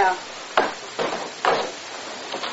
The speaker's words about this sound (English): Liz, open the cell block door.